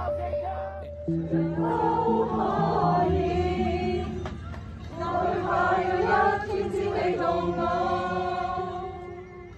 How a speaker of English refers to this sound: Amongst the crowd, one protester shouts out, "Down with Xi Jinping." They reply in unison, "Step down."